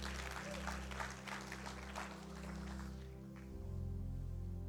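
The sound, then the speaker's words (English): An audience at a church claps hands in a dense, steady patter over a sustained low organ-like drone; the clapping fades out after about three seconds while the low tones carry on. “Come on, church, clap your hands.”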